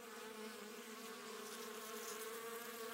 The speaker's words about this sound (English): The bees were still buzzing as suspiciously as ever.